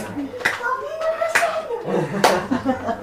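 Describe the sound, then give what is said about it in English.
A few sharp, scattered hand claps ring out amid a crowd's voices and cheering, irregular rather than a steady round of applause. “God gets a hand clap on that one.”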